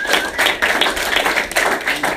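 A burst of audience applause, many hands clapping in a dense, steady patter that stays fairly loud throughout the couple of seconds, with no voices over it.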